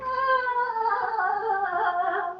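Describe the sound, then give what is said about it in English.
A person imitates Loth Wolves growling while chasing, with one sustained, wavering, snarling cry that lasts about two seconds. It is loud, fairly high and strained, and heard alone without other talk. “That was me getting chased by Loth Wolves.”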